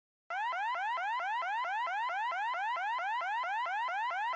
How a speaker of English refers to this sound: At 3 a.m, the house alarm went off.